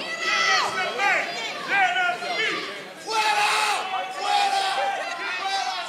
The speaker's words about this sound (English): He looks out at the crowd as people begin pointing at him and screaming.